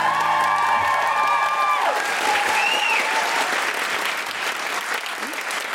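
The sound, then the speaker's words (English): Sustained audience applause for the guest Zoe Lyons, a dense wash of clapping that stays steady throughout, with a short musical sting fading out at the start and a brief whistle or whoop rising over the crowd. “A huge round of applause for our wonderful guest, Zoe Lyons.”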